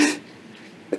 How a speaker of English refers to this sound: Bless you. All right, my apologies. Bless you.